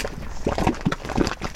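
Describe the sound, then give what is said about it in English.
Thick bubbling and plopping of a volcanic mud pot in the geothermally active landscape of Yellowstone National Park, stewing at close to 200 degrees Fahrenheit, with several soft, irregular gloops and pops rising over a steady wet simmer. “We leave you this week with some mud cauldron bubbles.”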